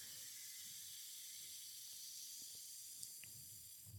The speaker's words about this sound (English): Oh, and it's going right on ice, you guys. That sizzled. It was like, that was a sizzle. Someday Mountain Dew will sponsor us. Gosh, that's beautiful. Listen to that fizz.